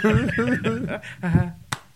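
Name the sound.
hand clap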